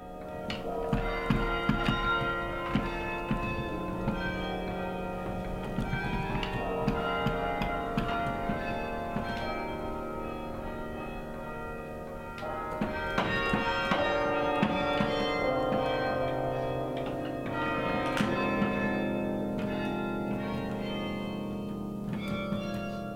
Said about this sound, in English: A keyboard instrument at the top of the tower is attached to clappers, which strike the bells, creating music.